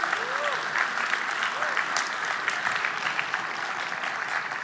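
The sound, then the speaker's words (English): A crowd claps steadily in a dense, continuous roar of applause, with scattered shouts and whoops rising over it, giving the Lord Jesus a shout and a clap. No clear speech stands out above the noise. “Can we somehow just give the Lord Jesus a big shout and a clap right now and say, I understand what the win is.”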